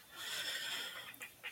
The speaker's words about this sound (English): He's got to take a sip of coffee. He's like breathing heavy.